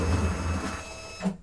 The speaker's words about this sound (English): And you might recognise that sound from the end of Braillecast. The closing of Braillecast is indeed the paper being fed back out of a Braille embosser having finished a Braille embossing job. So the embosser has embossed a document.